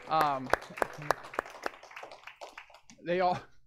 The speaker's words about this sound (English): I want to clap for our leaders real quick.